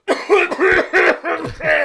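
A loud, forced fit of coughing, five or six harsh, throaty bursts in quick succession, with no talking around them, made by a person standing about 500 to 800 millimetres behind another person.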